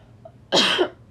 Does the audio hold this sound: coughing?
yes